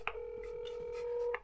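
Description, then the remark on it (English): A steady electronic telephone tone holds for over a second, framed by two short clicks at start and end, with no voices, as a phone call rings through. “All right, it's ringing.”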